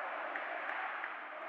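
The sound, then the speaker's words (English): A big arena crowd at a game involving the Pistons roars steadily throughout, chanting "throw him out" in a dense wash of voices with a faint regular pulse. No single voice stands out above the noise. “And crowd chanting, throw him out.”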